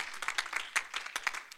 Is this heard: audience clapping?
yes